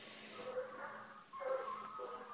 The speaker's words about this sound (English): Can you hear the barking? That's our local fox hunt, ladies and gentlemen. I say fox hunt. Officially, it should just be a hunt. Because fox hunting with dogs is now illegal in the UK.